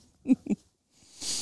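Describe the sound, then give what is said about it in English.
Someone snores: two quick, low nasal snorts in a row, followed by a long breathy rush of air. No one talks. “Snoring.”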